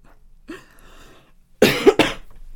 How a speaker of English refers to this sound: Excuse me for coughing.